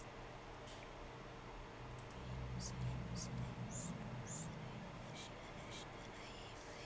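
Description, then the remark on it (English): Faint, eerie whispering: a series of soft, breathy hisses in short bursts over a steady low rumble, with no clear words. “Yeah, I hear whispering.”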